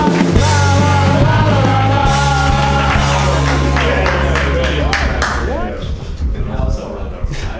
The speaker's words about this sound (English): But clap right now wildly